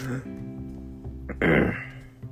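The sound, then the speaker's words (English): A single loud throat clearing by a person recovering from allergies, a short rough burst near the end, preceded by a low murmuring voiced sound. “Again, I'm recovering from allergies from clearing my throat.”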